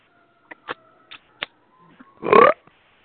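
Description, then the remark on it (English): A single loud, throaty burp with a slightly rising, croaky pitch, lasting about a third of a second. It is preceded by a few faint, short clicks and has no talking. “Ooh, somebody burped.”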